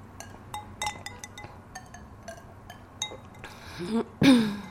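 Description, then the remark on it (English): Several light glass clinks tick through the first few seconds, then a short slurping sip of wine from a glass and a gulp, ending with a brief throaty vocal noise like a swallow or throat clear. “I'm going to take another sip of wine.”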